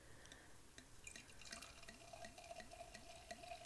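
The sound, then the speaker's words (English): Champagne trickles into a glass in a steady, bubbly pour of a little splash, soft gurgles and small splashes rising in pitch as the glass fills; quiet, with no one talking. “See if I can pour you a little bit.”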